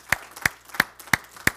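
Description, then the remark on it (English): A church audience claps hands in unison for the Lord, five sharp, evenly spaced claps in a steady rhythm about three per second, with no talking. “Can we give the Lord a great hand clap for what he has done in the year of 2019?”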